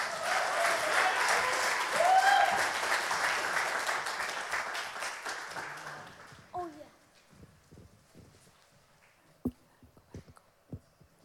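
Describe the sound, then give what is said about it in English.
A crowd applauds a man invited back to the stage during a sermon, in a dense, sustained burst with a few cheers, then the clapping thins out after about six seconds and trails off into scattered claps and a few murmurs. “Can you please give him a round of applause?”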